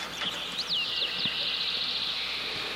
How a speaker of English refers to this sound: We have birds.